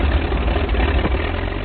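An airplane engine roars steadily as the plane flies away overhead, a loud, continuous low rumble with a rough, throbbing texture that holds at an even level throughout, with no voices.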